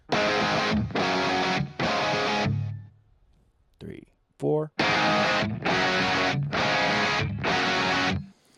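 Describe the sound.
Three long bursts of heavily distorted electric guitar chords played by one guitarist alone, a brief spoken count-in, then four more sustained bursts sounding thicker as a second guitarist comes in and doubles the part.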